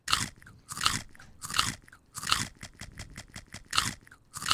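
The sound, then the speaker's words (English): Loud crunching on crisp snack chips with a delay effect applied, a series of sharp bites whose sounds repeat in quick echoing trails, giving a stuttering, rhythmic pattern. No talking. “And let's do a crazy effect on our crunch.”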